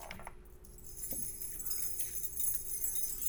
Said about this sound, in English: What? Keys. I'm making sure you can't see. How did you know? It's not a trick question. You've heard it before. On a scale of 1 to 10, how many of you were a 10 in confidence that these were keys?